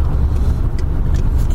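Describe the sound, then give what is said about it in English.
Steady low rumble of heavy road traffic passing while a driver waits to pull out, a continuous engine drone with tyre noise washing through, loud and unbroken throughout. “Where's all this bloody traffic coming from?”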